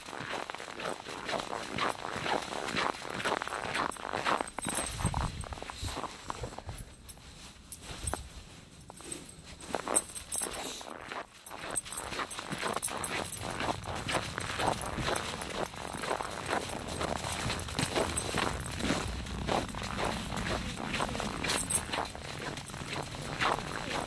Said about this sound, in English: Been walking for about 10 minutes. This will probably be like a 20-minute loop. Which is not bad in this weather.